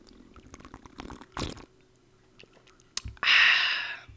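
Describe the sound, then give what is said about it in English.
A sip from a vodka mixed drink, with small wet mouth clicks and a short swallow-like burst, then a loud, airy slurp or breathy exhale near the end. No one speaks. “And a sip for you all.”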